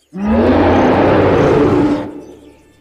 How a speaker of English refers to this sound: Just then there came a great shout that seemed to fill the sky.